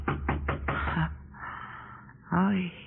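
Four firm, evenly spaced knocks on a wooden door sound close by, followed by a soft creak and then a brief, breathy vocal sound.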